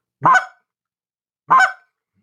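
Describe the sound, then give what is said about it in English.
Two sharp, loud clucks from a turkey call, played slowly as a demonstration, evenly spaced with a long pause between them, standing alone with no talking and clear silence around each note. “So like on a cluck”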